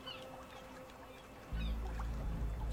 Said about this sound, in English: You guys hear that in the background? I can. Cool. No music, though. Nah, just harbor noises.